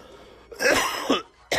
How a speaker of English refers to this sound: Each time I cough, my right side kind of is sore.